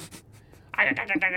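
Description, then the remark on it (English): A voice mimics the clicking sound of the Predator: a few soft, scattered clicks, then a louder, buzzy, rattling vocal sound lasting about a second. “And the Predator goes like that, makes the noise. That's what the Predator sounds makes like. Makes the clicking sound.”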